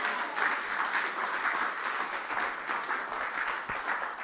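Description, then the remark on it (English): Steady, dense applause from an audience, many hands clapping at once in a continuous wash of sound that holds the same level throughout without any talking. “I know we are clapping, but this is a very difficult thing.”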